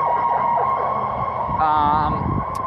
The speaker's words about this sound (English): Ambulance.